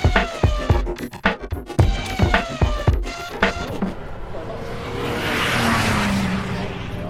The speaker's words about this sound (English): You're listening to the sound of the cars going through the Porsche curves as they line up for the grid for the start of the race. Here we go. Two Peugeot, a rebellion Toyota, and the first of the LMP2 cars.